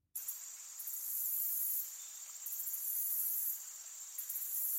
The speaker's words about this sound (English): Crickets and frogs orchestrated a cacophony of night sounds.